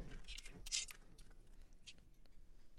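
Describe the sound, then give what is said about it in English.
Tarot cards being shuffled during a reading, heard as soft, papery riffling bursts that come in short, uneven clusters, quiet, with brief pauses between them. “No, sometimes it takes a minute for the cards to come out. A little bit of shuffling.”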